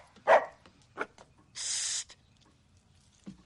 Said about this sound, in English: To a quirky dog trainer in The Accidental Tourist. Should Edward be barking that way?